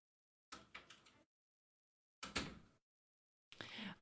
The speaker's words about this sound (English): Close our door, please.